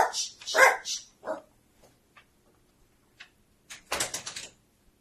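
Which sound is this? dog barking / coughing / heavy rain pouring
dog barking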